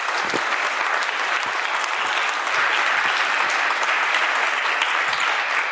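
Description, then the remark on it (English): An audience at New Church Live gives a sustained round of applause for a reverend joining for the final prayer, many hands clapping in a dense, steady wash of sound that stays loud and even throughout, with no voices standing out. “Please give her a round of applause, folks.”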